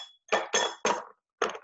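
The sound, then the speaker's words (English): Ingredients tumble into a glass with bright clinks: three quick knocks in a row, a short pause, then one more, with a faint ringing tone at the start. “And then I just dump everything in with the glass.”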